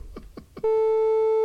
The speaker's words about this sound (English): Why is the phone going off?